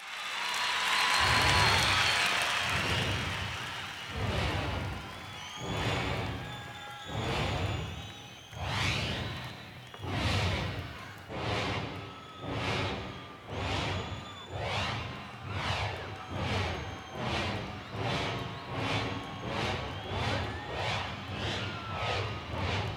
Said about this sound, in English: But here, live in concert, … coaxes the train sounds out of his synthesizer.